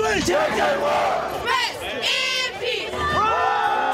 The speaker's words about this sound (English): Cheering parents, excited fans, players racing on and off the field. All that good stuff we associate with sports and schools and rivalries.